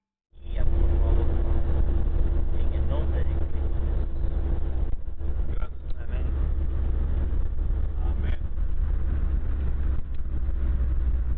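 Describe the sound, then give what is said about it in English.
A steady rumble of a vehicle on the road in Guatemala after leaving Taktik, following a truck full of supplies, its engine droning with a low hum and constant road noise throughout, no distinct events standing out. “We just left Taktik and we're following the truck full of supplies.”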